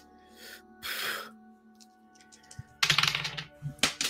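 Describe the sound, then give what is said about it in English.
Dice clatter across a hard tabletop, with a few soft rattles followed by a louder burst of quick clicking tumbles and one last short clack, the roll coming up a 10. “Damn it, your dice roll turned my lights on.”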